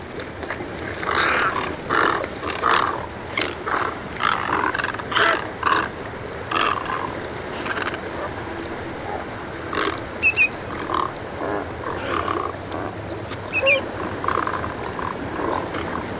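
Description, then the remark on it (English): Large birds fighting beak to beak at a glacial pond on the Connecticut shore, giving repeated harsh, strangled-sounding angry calls in rough bursts, dense at first and thinning out later, over a steady background hiss. “The angry calls sound like someone's getting strangled.”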